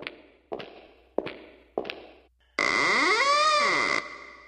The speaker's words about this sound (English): Is that another ring in the door? Oh, there it is again. I guess we got somebody else here.